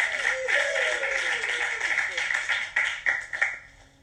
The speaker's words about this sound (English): Okay, let's give him some love and applause.